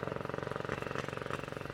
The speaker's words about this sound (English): Madam, stand back from the curb, away from the motor cars.